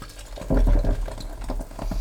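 Champagne fizzing up in a smoothie: a bubbly, crackling hiss with a series of low, uneven rumbling pulses, loudest at the start and steady for about two seconds, with no one talking.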